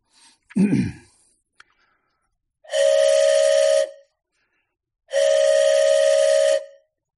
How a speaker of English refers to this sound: As we entered the museum in single file order, we were instructed by our group leaders to blow our dance whistles in a rhythmic pattern as we walked through the museum, a sound that our ancestors would surely recognize and understand.